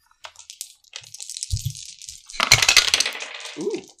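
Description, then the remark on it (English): Several dice clatter and rattle across a hard surface as players roll for a wisdom check in a tabletop game, a flurry of small clicking impacts that builds to a louder tumbling burst before settling, fairly loud with no voices. “I want everyone to roll plus wisdom for me.”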